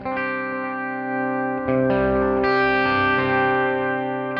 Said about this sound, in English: So just to kind of show you the difference without the modulating echoes, let me do the, sort of the same thing on the chords.